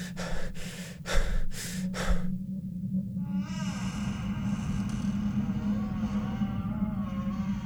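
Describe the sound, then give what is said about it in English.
Heavy, rapid breathing in complete darkness in a church storage room, four or five sharp gasping breaths in quick rhythm, then giving way to a steady low droning hum with faint wavering tones. “Sarah remains in complete darkness. Her breathing intensifies.”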